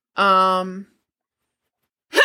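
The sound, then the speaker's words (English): One abrupt sneeze after petting cats, with a loud voiced burst that fades over about half a second, then a pause of silence before another voice briefly begins. “Bless you. That's what I get for petting cats.”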